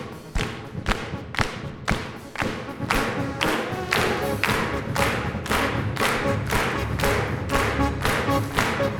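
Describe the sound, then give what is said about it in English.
A church audience claps along together in a steady, even rhythm as a worship song begins, roughly two sharp claps per second, with a low murmur of the crowd running underneath and no one speaking. “Can y'all clap like this?”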